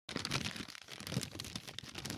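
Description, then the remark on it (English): A piece of paper with writing on it crackles and rustles continuously as it is crinkled and unfolded, with dense irregular crunching for about two seconds and no talking. “So I don't know, just listen up and see if you can, you know, this is just for our family, I guess, but just kind of listen up to this and see if you can hear like what I wrote down on this piece of paper.”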